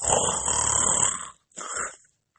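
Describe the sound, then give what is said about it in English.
A voice imitates a wolf snoring loudly: a long rumbling breath, a short pause, then a second shorter snort, alone with no talking. “When they came to the meadow, there the wolf lay by the tree and snored so loud the branches shook.”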